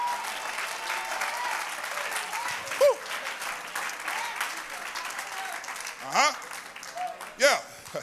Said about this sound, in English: Clap your hands unto the Lord and magnify him just for a moment.